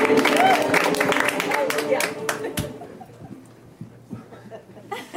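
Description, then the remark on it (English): An audience applauds the host: a dense burst of clapping mixed with crowd voices and some laughter, loud at first and then tapering off over a few seconds. “Get up for your host one more time.”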